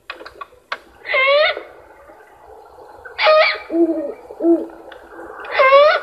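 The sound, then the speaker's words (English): An immature great horned owl calls: three loud, harsh, wavering screeches, with two shorter, lower hoot-like notes between the last two, over a faint background. “It could be an immature great horned owl.”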